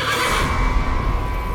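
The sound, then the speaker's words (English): A horse, a red mare, neighs in one loud, sustained call lasting over a second, with a steady, buzzing, harmonic tone and no voices. “Then the red mare came up behind him.”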